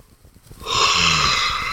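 A loud, drawn-out yawn swells up after a brief quiet moment, a breathy, airy exhale with a low voiced groan running through it, held for over a second.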